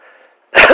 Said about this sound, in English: Sorry, didn't mean to cough in the mic there.